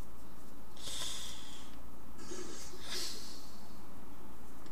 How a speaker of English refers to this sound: is that you breathing?